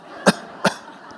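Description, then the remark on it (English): Two short, sharp coughs from the audience in quick succession, moderately loud against a low background room hum, with no talking. “If you can't give me a good Baptist nod, I'll take a good Methodist cough.”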